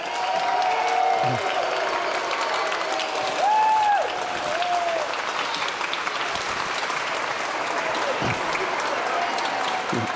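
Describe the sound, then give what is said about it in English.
A large audience applauds steadily for about ten seconds for a VBS chair being presented with a Spirit Stick, a dense, sustained wash of clapping with a few faint whistles or cheers rising above it. “So as I bring this person together to present her with the Spirit Stick, will you please give a warm round of applause to our chair,”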